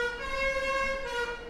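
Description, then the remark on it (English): A lead car passes through the borough again, sounding a sustained, steady horn-like tone that holds loud for over a second with a slight dip near the end, with no one talking. “And the lead car coming through again with what must be the second batch.”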